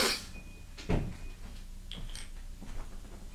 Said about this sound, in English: Yeah, that dryer's really being a pain. Why does it keep... Damn this office! You have to share it with the laundromat next door.